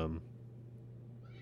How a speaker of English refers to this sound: I tried to pick her up to meow in the mic and then put her down and she scrambled.